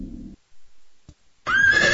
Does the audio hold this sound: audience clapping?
no